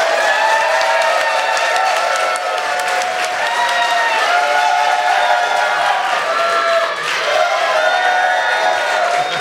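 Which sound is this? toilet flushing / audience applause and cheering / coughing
audience applause and cheering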